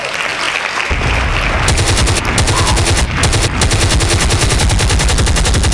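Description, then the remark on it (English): A loud sound effect of automatic gunfire bursts in after a brief moment, a rapid, continuous rattle of shots that keeps going for several seconds with only tiny breaks, no voices. “You would shoot at me, huh?”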